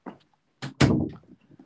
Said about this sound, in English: Can you close the door on your way out as well?